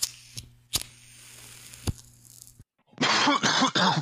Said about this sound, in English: … takes it from them and takes a puff before coughing and handing it to Clay.